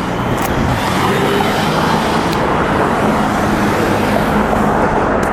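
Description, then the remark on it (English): A car runs a red light and zooms through an intersection making a left turn, amid a steady, loud roar of road and engine noise that stays constant throughout, with no speech. “I made a massive error in driving traffic laws because it was red, and then he zoomed through making a left turn.”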